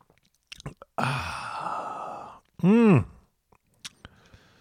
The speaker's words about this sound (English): Let's have a big old sip of that reading wine and start working on that Tuesday morning hangover.